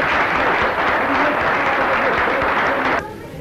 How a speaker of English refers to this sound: Give me another clap then, come on.